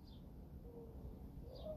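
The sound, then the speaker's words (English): A bird gives a couple of brief, faint high chirps, one at the start and one near the end, over a low steady background rumble with no talking. The bird has just landed on a perch outdoors in cold weather in Arizona. “There's the bird. It just landed on the perch.”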